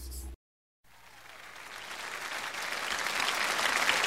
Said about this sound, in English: All right, now. Let's keep those applause going, ladies and gentlemen.